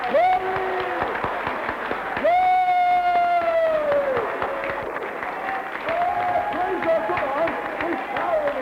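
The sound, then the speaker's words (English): A church audience claps steadily and loudly for Jesus while voices cheer with long, rising whoops and shouts over the top, continuous for the whole stretch. “Well, come on, let us give Jesus a clap again.”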